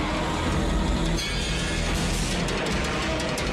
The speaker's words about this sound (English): Whoa, car crash. No! Car crash! Down the cliff. There's a kid out there using his car to kill people.